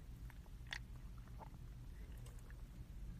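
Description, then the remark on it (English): A quick sip of green tea from a can, taken while sitting in a car: a few soft slurping and mouth clicks spread over a couple of seconds, with a steady low rumble underneath and no one talking. “But anyways, quick sip.”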